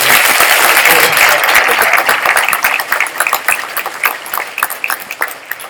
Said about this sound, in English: Guys, can we take just a second and just give our choir just another round of applause?